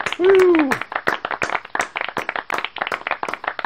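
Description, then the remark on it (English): Steady applause of rapid, irregular claps continuing for a few seconds, opening with a short voiced whoop that swoops up and down in pitch, celebrating the 2017 champion of the Sifted Fantasy League. “the 2017 champion of Sifted Fantasy League, this applause is for you.”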